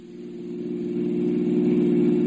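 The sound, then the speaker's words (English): A car engine hums steadily with a low, even drone, growing slightly louder over a couple of seconds as the car gets under way, heading back into town. No voices. “I told myself all that as I headed my car back into the town.”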